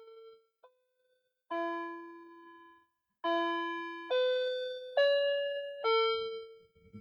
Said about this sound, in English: There you go. The clock has chimed.